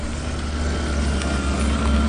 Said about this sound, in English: Workers at the farm are racing to slaughter and skin the minks. There are forklift trucks going back and forth, and inside one of the barns there's a machine running.